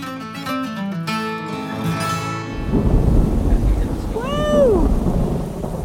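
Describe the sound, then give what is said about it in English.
After a few seconds of steady tones, a loud, rumbling roar of heavy rain and thunder at the Ashtabula County Fairgrounds in October takes over and keeps going, with a brief rising-and-falling cry like a meow heard over it. “And if you arrange to have us experience that thundering rain again, we'll turn up the microphones.”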